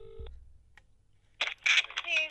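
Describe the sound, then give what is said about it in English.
A brief electronic telephone keypad tone sounds at the start of a phone call to give Labour Party headlines, followed by a short pause and then a few louder, rougher bursts of noise that may be muffled voices over the line. “Okay, so, how long could I stay on the phone for doing Labour headlines.”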